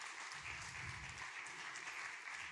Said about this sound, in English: That worship team tonight, are they still in the house? Can we just clap for the worship team again? Because that was ridiculous.